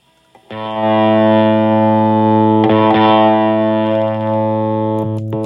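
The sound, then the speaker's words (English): A bright, heavily distorted electric guitar chord, played through a distortion pedal with the guitar's tone knob opened up, rings out loud, sustaining for several seconds, then gets struck again midway and keeps buzzing with no voices. “Sans Amp, that doesn't do much, but if I open up this, tone knob on the guitar.”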